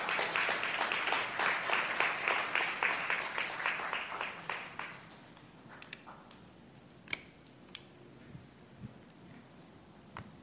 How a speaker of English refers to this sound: So on that note, I'd like to bring up our local partners who are here with us today. And can we give them a big round of applause as they come up here?